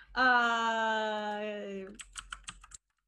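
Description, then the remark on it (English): A long, steady droning tone sags slowly in pitch, then gives way to a short burst of keyboard typing during a Zoom meeting: half a dozen crisp key clicks in an uneven rhythm. “I hear you typing.”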